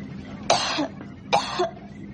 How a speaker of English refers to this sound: How long have you had that cough? A few days now. May I? Cough for me.